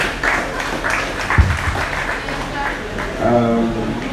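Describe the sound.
An audience applauds steadily for the last facilitator of a session, a dense wash of many hands clapping at an even level, with a voice briefly rising over the clapping near the end.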